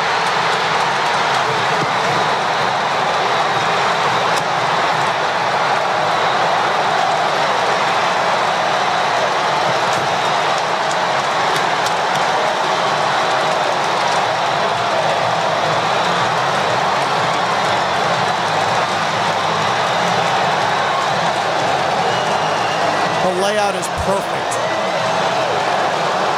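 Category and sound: crowd, stadium crowd cheering wildly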